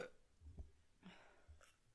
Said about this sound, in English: Now I've got hiccups.